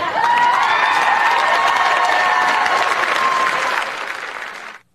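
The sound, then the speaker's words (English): A crowd cheers and applauds loudly in support of a mom who quoted Hitler in a newsletter, high whooping voices riding over dense clapping, holding steady for about four seconds before quickly fading out. “People cheering for that. That's what you just saw.”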